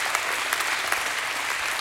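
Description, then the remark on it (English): A church audience claps their hands to give God praise, in steady, dense applause, a continuous rush of many overlapping claps with occasional sharper accents, sustained for a couple of seconds without any voices. “Can you give God a hand clap and a shout of praise?”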